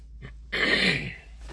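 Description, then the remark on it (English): A single rough throat clearing, a short raspy burst after a brief soft lead-in, heard alone with no talking. “Oh, I had to clear my throat there.”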